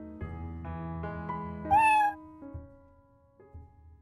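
A cat meows insistently in a run of harmonic cries, with one louder, higher yowl in the middle before the calls trail off. No one speaks.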